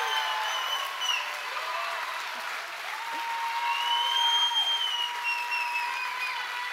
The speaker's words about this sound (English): And if you guys could just give them a round of applause.